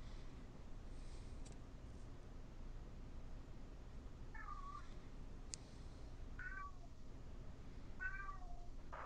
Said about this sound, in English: Meow. Your cat even over there trying to talk to make this movie interesting. Yeah, I think Boudreaux has had enough of this. And he's still going.